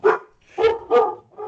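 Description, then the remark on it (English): A dog barks four times in quick succession, sharp and fairly loud, with short gaps between the barks and no talking over them. “And your dog agrees.”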